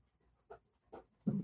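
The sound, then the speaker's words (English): A dog flap door swings and knocks a few times as a dog pushes through, two light taps followed by a louder, rattling clatter. “Doggy door.”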